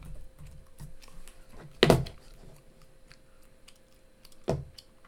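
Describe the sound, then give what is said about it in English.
Typing on a computer keyboard to look up Kevin Hart and Zootopia: a quick, uneven patter of soft key clicks, with two noticeably louder, heavier keystrokes standing out, and no talking. “Kevin Hart is what I'm typing.”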